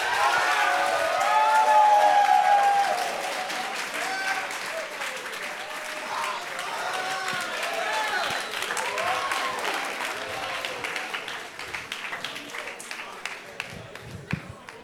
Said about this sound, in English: Thank y'all. Thank y'all. Appreciate it. One more big round of applause for these folks.